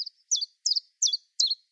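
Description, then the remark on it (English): A bird sings a series of high, bright notes repeated at an even, steady beat, about five quick phrases in under two seconds, clear, with silence between each. “At its most simple, the notes may stick to a regular beat.”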